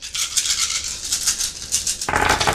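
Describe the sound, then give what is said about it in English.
A handful of 16 dice, rolled during a game, rattles in quick, bright clicking bursts for about two seconds, then spills out in a fuller, heavier clatter. No one speaks. “So roll 16 dice and you have 2 automatic successes.”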